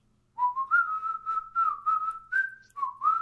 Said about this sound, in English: Yeah, I can't stay that high pitched with the whistle. I can. It's my whistle is really weak. I've got a really weak whistle.